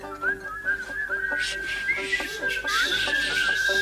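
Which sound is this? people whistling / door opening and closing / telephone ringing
people whistling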